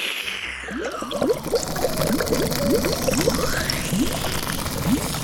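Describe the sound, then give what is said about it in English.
Fizzy liquid from a fizzy lake gurgles and slurps as about 50 gallons are sucked up through Franny's nose hose, a steady stream of bubbly glugs rising in quick succession, fairly loud, with no talking. “First, she sucks up about 50 gallons of the fizzy lake.”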